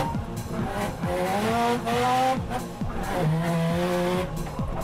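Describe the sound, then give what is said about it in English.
A car drifts sideways with long, wavering tire squeals and a revving engine that climbs and drops repeatedly, loud, with no voices. “Drifting is the art of driving a car sideways.”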